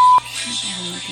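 A cell phone rings with a music ringtone: a loud, steady electronic beep cuts off sharply, followed by a few soft melodic notes over a constant low hum.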